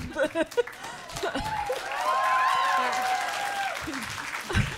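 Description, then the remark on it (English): A burst of audience clapping and cheering for the nipple scale, a 0 to 5 nipple movie rating, swells after brief talk, holding steady for a couple of seconds with voices whooping over the dense patter before fading as speech resumes. “You better clap for the nipple scale.”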